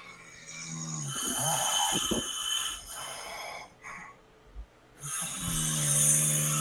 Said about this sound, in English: There's three people just snoring away and all like in unison, like they're playing.